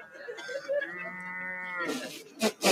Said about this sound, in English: What the... What are these cows here for? Well, they're apparently for …'s closing number.